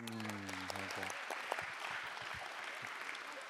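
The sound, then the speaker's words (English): An audience claps their hands to welcome Reverend Arm, a dense, steady patter of applause that holds for several seconds, with a low sustained tone fading out during the first second. “You can welcome Reverend Arm with a hand clap.”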